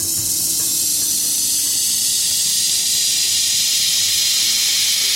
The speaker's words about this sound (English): The sounds we're listening to are coming from a model of a tornado-like vortex inside a large tank filled with water. This twister in a tank is helping scientists learn more about the way tornadoes form and how they change over time.